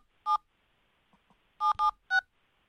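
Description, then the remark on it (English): Several short, bright telephone keypad tones beep in an uneven sequence, one isolated press followed by a quick cluster of three, as someone dials a show's call-in number to call live on the air; no voices. “I'm going to be the first caller. Then that guy can be the second caller.”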